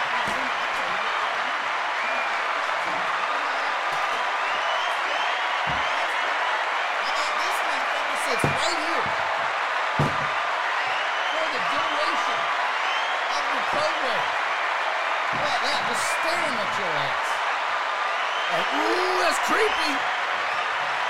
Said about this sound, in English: Oh, the crowd. I forgot to turn that off.